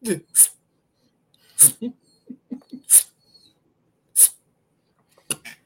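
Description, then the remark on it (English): A voice imitates a woman's stressed breathing: quick, strained gasps, short sharp sips of air repeated about five times with brief pauses and small breathy murmurs between them, fairly loud. “She taking sips of air like my man did in Harlem Nights when they had him locked in the bank vault.”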